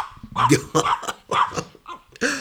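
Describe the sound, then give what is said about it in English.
A small Yorkshire terrier named Isaac barks, letting out about five sharp, high-pitched yaps in a quick, uneven burst. “If not, he's me dog. He's a little Yorkie.”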